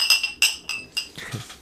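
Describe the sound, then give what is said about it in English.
Glasses of liquor clink together in a toast, several bright ringing taps in quick succession, fairly loud, followed by a softer low thud. “I mean, times are changing. Cheers.”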